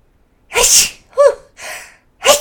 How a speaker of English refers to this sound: Excuse me again. Oh, now I think I'm going to sneeze. Hold on.